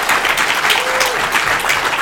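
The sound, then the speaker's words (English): A sound effect of people clapping, taken from YouTube: a dense burst of applause, many hands clapping steadily and loudly at once, with a crowd-like wash of sound throughout and no clear individual claps standing out. “Now, if you are listening at home, you're probably wondering how we manufactured that sound effect of people clapping.”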